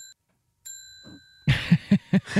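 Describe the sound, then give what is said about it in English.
A victory bell rings out with a clear, sustained metallic tone, struck twice, followed by a loud run of rapid, rhythmic clanging strikes in quick succession. “That's my victory bell.”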